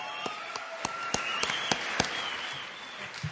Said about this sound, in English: Keep those applause going for our second place winners. They are wonderful.